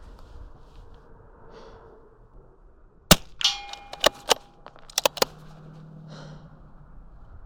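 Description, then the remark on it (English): Biathlon rifle shots at targets: about five or six sharp cracks fired in quick, slightly uneven succession, followed by ringing metallic clangs. Quiet breathing can be heard before the first shot. “Some people take more breaths between shots.”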